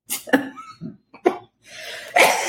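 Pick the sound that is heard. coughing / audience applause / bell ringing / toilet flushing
coughing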